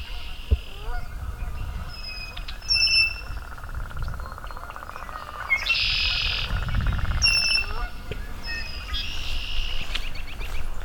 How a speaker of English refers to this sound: American robin.